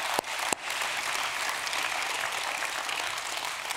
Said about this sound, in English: And I want somebody who experienced that at least once, say amen and clap for somebody who needs to hear that today. Come on.